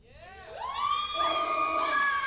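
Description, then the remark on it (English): A youth group, the 180 group, cheers and shrieks loudly, with high-pitched voices rising into sustained, overlapping squeals that build quickly and hold steady for a couple of seconds. “Everybody in my 180 group, make some noise.”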